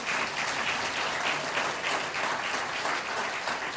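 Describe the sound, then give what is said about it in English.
A church audience claps steadily and loudly for the pastor's wife for a few seconds, a dense wash of many hands without letting up, with no voices standing out. “Always a much louder clap for the wife.”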